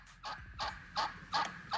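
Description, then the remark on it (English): A person imitates a turkey's gobble: five quick, loud, throaty bursts in a steady rhythm, with no other talking. “If me and Steve Harvey was turkeys, y'all's Thanksgiving would be over because it would that's probably right.”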